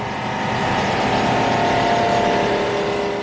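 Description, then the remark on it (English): A loud, steady drone of many fishing boat motors running at once on the Joro Lagoon in fog, a dense continuous engine hum with a buzzing tonal edge and no breaks, with no one speaking. “Then suddenly, the quiet ends.”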